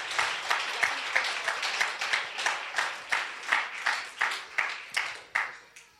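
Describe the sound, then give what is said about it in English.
A crowd at an end-of-year thank-you service applauds steadily for several seconds, the dense clapping settling into a loose, rhythmic pulse with sharp bursts, fairly loud, with no one speaking over it. “All right, so you can give yourselves a big round of applause and those around you once again as we thank you for this year.”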